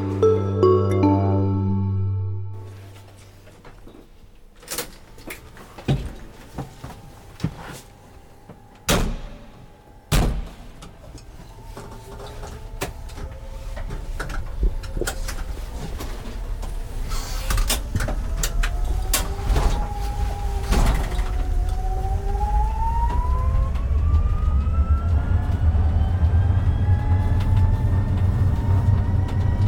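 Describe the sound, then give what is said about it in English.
A 100% electric truck's doors shut with several sharp clunks after a brief chime, then a rising motor whine and low rumble build steadily as it drives off, with no talking. “Yeah, so it's an absolutely fantastic project to work on, an amazing vehicle, and the mission itself and what we're trying to do is really impactful and empowering.”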